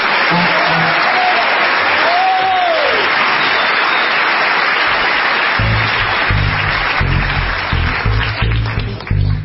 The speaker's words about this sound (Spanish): Es el nombre del escritor, pero no lo vamos a decir. No. Para que al descubrir la gente el nombre, estalle en una ovación.